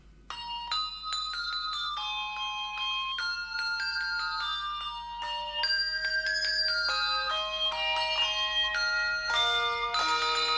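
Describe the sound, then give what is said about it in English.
A melody rung out on bright, chiming bells, note after note in a steady tune with ringing overtones, clear for about ten seconds, with no voices, from a Hershey's Kisses holiday TV commercial showing the candies as bells, run since the 1990s. “So that was a bunch of Hershey's Kisses looking like bells.”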